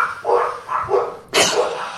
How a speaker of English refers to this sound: Dog barks.